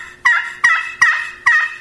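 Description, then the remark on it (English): Four slow, evenly spaced gobbler yelps played on a turkey friction call, each note raspy and slightly deep, loud with short gaps between them, no talking. “You know, a gobbler will yelp, especially a jake, a juvenile gobbler.”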